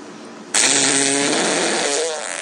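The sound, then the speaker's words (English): A single loud, sustained fart, made on command by a woman, bursts in abruptly and rasps on for about two seconds with a buzzy, fluttering tone, prominent with no talking over it. “How is she farting on command?”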